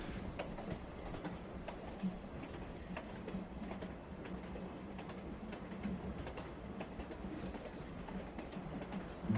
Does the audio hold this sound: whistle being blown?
no